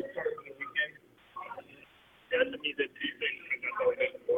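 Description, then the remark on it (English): Thin, tinny restaurant din at lunchtime heard down a phone line: overlapping chatter and clatter, fairly loud, dropping briefly to a near-silent lull before the busy babble swells back. “What is all that noise? Well, I'm at lunch.”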